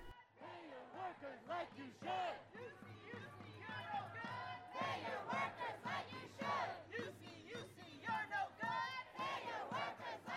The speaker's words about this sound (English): At UC Santa Barbara specifically, the sounds and smells of the Pacific Ocean that you can usually find on campus were drowned out by chants for equal wages and the sweat of workers fighting for fair treatment.